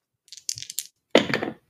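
Two six-sided GURPS dice rattle briefly in a hand with a few light clicks, then clatter onto a hard surface in a short, loud tumble that quickly stops, landing on snake eyes. Clear, with no voices.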